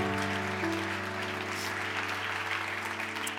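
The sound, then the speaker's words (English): A church audience claps steadily for six people who said they want to give their lives to Jesus, a dense wash of many hands that holds an even level throughout, with sustained organ-like chords ringing underneath. No one speaks. “Church, can we clap for the six people that said, hey, I want to give my life to Jesus?”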